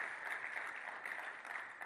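Steady, dense clapping from a crowd of people, a continuous patter of many hands at a moderate level with no pauses and no voices standing out.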